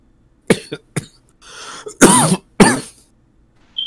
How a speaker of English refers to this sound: that sound like a COVID cough. No, that's fucking weed cough, dude. I was about to say, I can smell the weed, bro. It's pretty dank, so yeah, I'm not surprised.